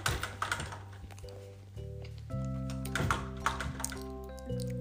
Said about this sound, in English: You're chewing mini muffins right now during a podcast.